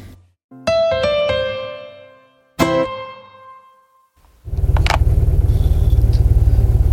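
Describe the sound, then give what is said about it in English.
Two ringing, harmonic tones fade out, then a car engine starts up loud, settling into a steady, pulsing low rumble as it idles in traffic, with no voices. “Sitting here in traffic on the way to Olivewood Manor.”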